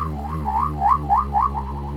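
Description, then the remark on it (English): A sci-fi spaceship sound effect: a steady electronic drone with a warbling tone that swoops upward again and again in a quick pulsing cycle, fairly loud and continuous, with no talking. “why would a spaceship, why would a spaceship sound like that?”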